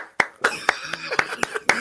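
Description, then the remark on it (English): Seven sharp, evenly spaced claps or snaps, about four per second, imitating the thin, rippled applause of a pub audience after a band's song, with a faint murmur of voice between them. “All we'd hear is a rippled applause.”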